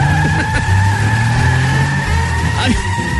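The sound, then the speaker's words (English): A car engine drones low while tires squeal in a sustained, high-pitched screech, as if the car is whipping around a sharp turn, loud and continuous throughout. “This person said, every time my mom would make a sharp turn or accelerate, she would yell to us, hold on to your butts.”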